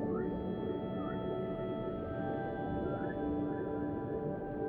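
Whale song: drawn-out tonal calls that swoop up and down in pitch, repeating every second or two over a steady, low underwater rumble, with no talking.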